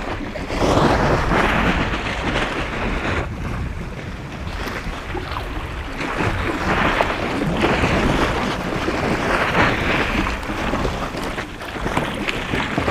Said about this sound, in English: The iceberg, there's overhangs. You can hear the water that laps underneath the ice.